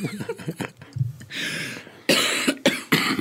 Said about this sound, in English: We're both still getting over a cold, by the way. Yeah. Sorry for the coughing.